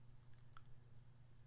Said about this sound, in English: And clicking confirm.